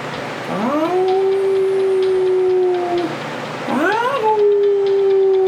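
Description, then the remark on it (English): A dog howls twice, each a long, loud wail that swoops upward and then holds a steady pitch for a couple of seconds, over a faint background hiss with no one talking. “This dog's howling.”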